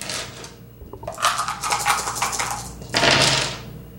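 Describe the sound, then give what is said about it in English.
Dice rattle and clatter across a hard surface in a rapid burst of clicks, pausing briefly before a second loud tumble settles, with no talking, as a player rolls again in a dice game. “I am going to roll again.”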